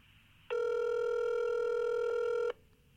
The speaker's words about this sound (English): Ooh, he's not answering. This isn't a good sign. He's usually very good about answering his phone.